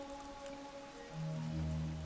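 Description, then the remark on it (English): Steady, dense heavy rain hisses continuously, pounding against window panes in heavy gusts of wind on an evening in London, with low sustained droning tones swelling beneath it toward the end. No voices are present. “The rain was falling so fast, pounding against the window panes, that what started as a pitter-patter quickly changed into a single rushing sound, louder than the small fire that crackled noisily in the hearth.”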